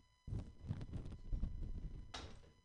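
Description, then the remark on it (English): A chair is dragged across the floor, a low, rumbling scrape lasting about two seconds, ending with a brief brighter scuff as it settles into place. “I need a chair, because it's a meeting, right?”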